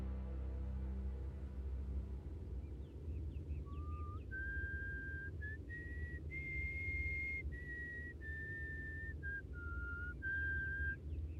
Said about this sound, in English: Can I join you? Two whistles are better than one.